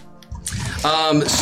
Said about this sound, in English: I'm pouring dice apparently.